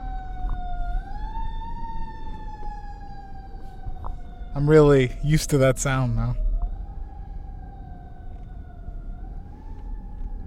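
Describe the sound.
An emergency vehicle siren wails continuously with a slowly rising and falling tone. Someone briefly speaks over it partway through, and the siren carries on steadily afterward.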